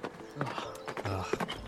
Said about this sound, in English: or should we hop on the horse cart? I think we should get onto the cart. Let's hop on.